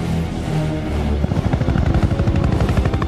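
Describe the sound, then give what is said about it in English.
Helicopters roar in to shoot at a crowd herded into a kill zone, the rumble swelling into a loud, rapid rotor chop after about a second, steady thudding pulses filling the soundscape with no voices. “And then the helicopters come in and start shooting at them.”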